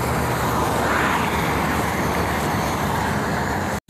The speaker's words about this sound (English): There's a train. Holy smoke.